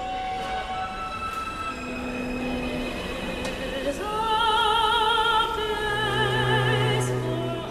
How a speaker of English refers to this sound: And then as the train settles into a groove, the transistors slow, and then this is the sound that comes out, which gives you that melody.